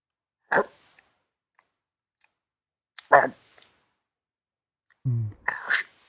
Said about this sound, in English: I'm just going to shove this thing in my mouth. Sounds great. All right, shrimp hot dog. This is what it sounds like.